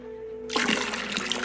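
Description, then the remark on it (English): Water pours out of a container in a steady, splashing gush that starts abruptly and continues, fairly loud, with no one speaking over it. “And in this case, a container for the water, which you can think of as being my life force.”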